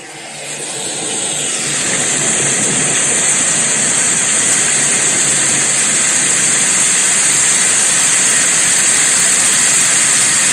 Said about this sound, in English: And I'm going to go ahead and play some rain sounds in the background for a couple of minutes, and we'll have some fun.